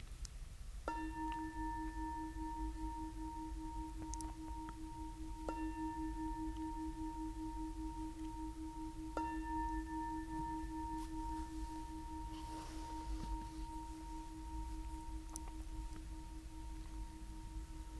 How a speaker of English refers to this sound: And with this fuller here, yes, I'll ring the bell to end the sitting.